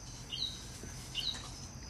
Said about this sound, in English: Damn. That bird's trying to piss me off, bro.